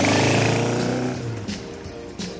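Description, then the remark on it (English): A loud motorcycle engine roars, its throaty revving tone gradually dropping in pitch as it eases off, with no voices. “There they were in their motorcycle, riding around like a Southern County's Bonnie and Clyde.”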